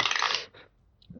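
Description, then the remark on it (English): Dice clatter across a hard tabletop in a short, bright rattling burst about half a second long, followed by a few faint clicks as they come to rest. No one speaks. “Then I should probably get another dice.”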